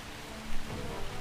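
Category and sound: nature, heavy rain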